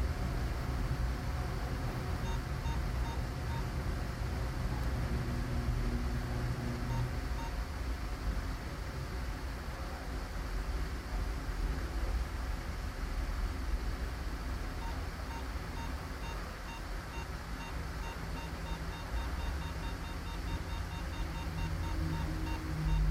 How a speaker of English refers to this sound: So really all you're hearing there is our EMF detector. We were outside the house at that time. We had left it on the stairs. We had left a recorder next to it, and it went off, only this time for whatever reason.